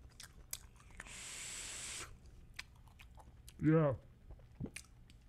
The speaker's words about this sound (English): You want me to chew into the microphone? You want this to turn this into like an ASMR thing?